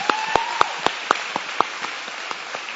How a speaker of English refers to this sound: Can we give Nikita a big hand clap?